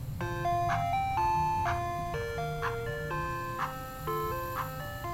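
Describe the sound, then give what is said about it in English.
An ice cream truck's tinkly electronic jingle plays a repeating melody over the low rumble of an engine, steady, with no one speaking. “I guess, I don't know, is it a kids-only policy for ice cream trucks?”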